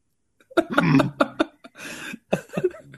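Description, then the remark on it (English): A dog snoring: a run of loud, rough snorts and raspy breaths in uneven bursts, with a longer hissing exhale in the middle and no talking. “I'm sorry to our fan base that I have to listen to a fucking dog snoring.”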